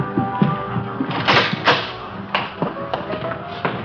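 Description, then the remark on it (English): A side door at a club opens and shuts, with a series of soft clunks, taps and a latch-like knock, then a firmer thud near the end. No voices are heard. “This way, please. Out the side door.”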